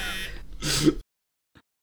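A phone buzzes in a short, harsh burst, followed by a louder rough clatter lasting about half a second, then near silence with a faint tick. No one speaks.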